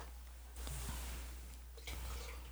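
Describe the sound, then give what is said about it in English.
Beer is dumped back into a pitcher in a steady, hissing splash that briefly pauses and then resumes, fairly quiet, with no one talking. “You want to dump this back in the pitcher?”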